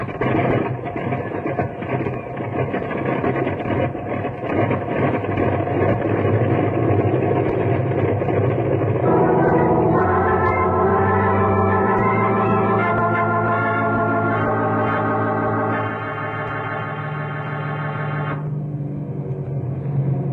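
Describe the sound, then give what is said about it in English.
An airplane engine runs with a loud, steady drone and a rough low rumble as the plane gets under way to a hospital with an injured man. Midway, sustained humming tones join in, shift in pitch, then fade. No voices are heard. “Now, you fellows look after the injured man, and I'll get the plane on its way to a hospital.”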